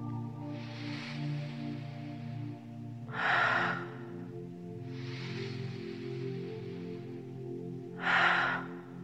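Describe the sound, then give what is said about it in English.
Slow, deep breaths in a breathing exercise over a soft sustained musical drone: two long, gentle inhales, each followed by a louder, breathy exhale, at a calm, steady pace. “Give all your attention to your breath.”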